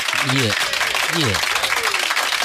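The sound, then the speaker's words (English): Steady, dense crowd applause on the Kiss Mornings radio show on Kiss 969 fills the whole stretch at a loud, even level, with a couple of short vocal whoops rising briefly over the clapping. “Take a round of applause.”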